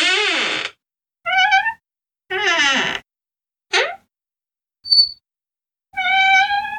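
A front door creaks open and shut in a run of about six separate high, whining squeaks that bend up and down in pitch. The squeaks are fairly loud, with short silences between them and no talking.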